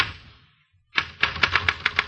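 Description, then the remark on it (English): Typewriter keys clack in a quick, slightly uneven burst of about eight sharp, crisp strikes. A fading hiss and a brief pause come before the typing starts. “And I just sat there looking at the typewriter keys, hating them one and all from A through shift lock to ditto marks.”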